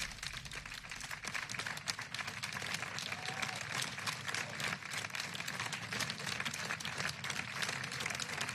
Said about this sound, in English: That's the sound we became accustomed to during the COVID-19 lockdown, the weekly clap for carers as we paid tribute to NHS staff and other key workers.